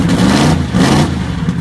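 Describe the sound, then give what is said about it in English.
The engine of a transaxle car revs up twice in quick succession, a loud, throaty roar with harmonic rumble that rises and falls, with no talking over it. “Probably throw some revs into it at some there point.”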